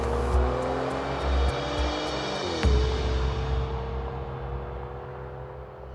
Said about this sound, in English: They got in Eric's car and Lyle driving very fast.